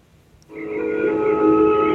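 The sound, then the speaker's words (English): At midday on Isla Nublar, a loud, sustained metallic screech starts abruptly after a brief quiet and holds steady, with harsh tonal squealing over a low grinding rumble, as a huge metal box is pushed in front of a gate in an electrified fence. “The midday quiet of Isla Nublar is broken by a loud screeching sound. It emanates from a huge metal box being pushed in front of a gate.”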